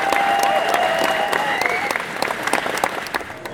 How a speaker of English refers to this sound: Ladies and gentlemen, please join me in giving a massive round of applause to our panelists today. Michael Pennington, Julian Culver, Penn Colley, and Michael Culver!